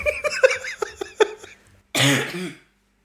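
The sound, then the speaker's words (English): Breathy, voiced laughter bubbles up in short bursts, then after a brief pause a single loud, harsh cough erupts. “Because I cough and then people don't want to hear me cough all the time.”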